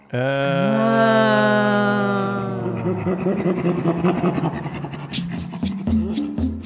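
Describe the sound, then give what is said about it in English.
Two chimpanzees, Kendall and Tammy, tickling each other give panting laughter: a drawn-out tonal cry gives way to rapid, breathy, rhythmic pants and grunts, fairly loud, with no speech. “This odd, like, panting laughter is, like, their way of just saying, like, oh, my God, this is fun.”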